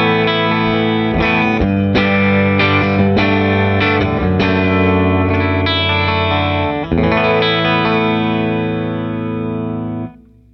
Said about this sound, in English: I'm going to set the mic up at the exact same place on the speaker, same distance away and everything. So, all right, clean tone, vibrato channel, deluxe reverb reissue.